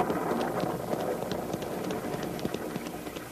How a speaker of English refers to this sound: We can still land dry. The rain's only beginning.